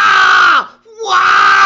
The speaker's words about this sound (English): screaming in my ear.